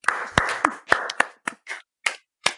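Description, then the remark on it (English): A short burst of clapping for competitive eater Joey Chestnut, who ate 413 chicken wings, roughly ten sharp hand claps at an uneven pace, loud at first and thinning out toward the end, with no voices. “Can we hear it for Joey Chestnut?”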